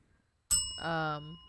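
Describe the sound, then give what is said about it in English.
A single bright bell ding with a sharp strike and a sustained, shimmering ring that fades over about a second, while a brief voice sounds over the ringing tail. “Can you hit the bell?”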